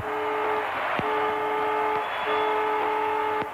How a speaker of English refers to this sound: Siren sounds.